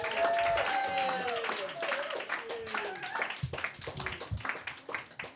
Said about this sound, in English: Let's give him a big round of applause. Yeah.